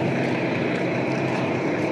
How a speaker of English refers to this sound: And let's pause this because there's a truck here.